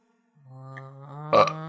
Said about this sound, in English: I might have another burp coming, though. Oh. Sorry.